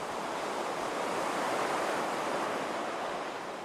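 A steady, broad wash of ocean surf rolling onto the shore, consistent in loudness throughout, with a slight swell in the middle and no voices present.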